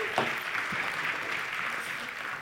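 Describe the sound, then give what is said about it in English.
A church audience claps steadily in a dense, continuous wash of applause for its lead pastor, who is starting a new series, with a few brief cheers or whoops rising above it at the start. “Why don't you give it up?”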